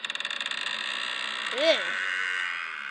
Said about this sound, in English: A cracking door.